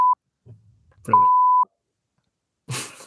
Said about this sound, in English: When you edit this, can you make every time we say, can you like put a sweary beep thing over it? Yeah, I'll put a beep over